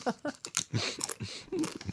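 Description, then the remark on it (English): Loud, crackly crunching of a large, very crunchy chip being chewed: a rapid, irregular run of sharp, brittle bursts, several in quick succession, with faint mouth sounds between bites. “Oh my God, this is extremely crunchy. Can you hear it?”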